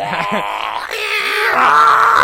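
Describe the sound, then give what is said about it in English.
A voice imitates a distorted guitar, a strained, buzzing drone that wavers at first, then steadies into a brighter, louder sustained tone for about two seconds. “Let me do some guitar noise.”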